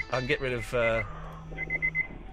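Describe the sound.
An alarm clock sounds a quick run of four short, high-pitched beeps at an even rhythm. A voice and a low steady hum come just before.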